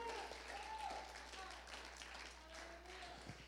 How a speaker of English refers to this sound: Somebody give him a hand clap in this.